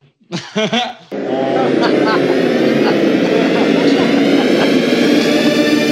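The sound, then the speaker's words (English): A voice imitates the THX theater sound test: a few quick vocal bursts, then a loud, sustained droning swell rich in overtones that holds steady for about five seconds. “Remember THX, the theater sound test?”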